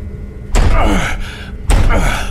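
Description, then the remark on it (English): Two heavy, booming thuds about a second apart, as a body slams hard against a stuck door frozen with ice to force it open, each impact ringing out briefly with a dull rattle before the next blow. “I'm gonna force it open.”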